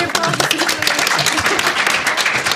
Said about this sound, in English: Let's applaud me.